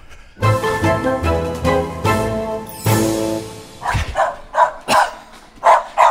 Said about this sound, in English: Okay. Well, that's Pedro's neighbor's dog.